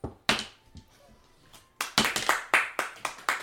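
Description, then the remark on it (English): Clapping from a group of people: an early sharp clap, a short lull, then a steady burst of loud, brisk applause filling the final second and a half, with no voices. “Everybody's clapping, she just, whatever, and just keeps walking.”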